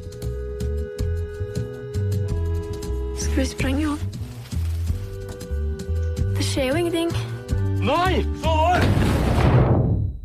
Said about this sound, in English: After the explosion